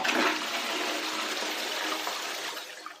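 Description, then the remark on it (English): A toilet flushes, a loud rushing gush of water that stays strong for a few seconds and begins to ease off at the end, with no voices. “researchers at America's Penn State University have found a way to dramatically cut the water use of the average toilet”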